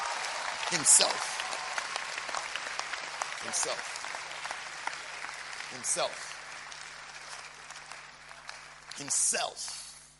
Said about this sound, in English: I thought by now you'd be clapping for Jesus. When you look at the things that he has done.